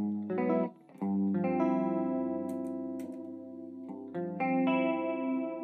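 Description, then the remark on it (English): Electric guitar played through a lush tri-chorus effect, a few strummed chords ringing out and sustaining with a shimmering, thickened tone, fairly loud with no one talking. “It's a tri-course sound there.”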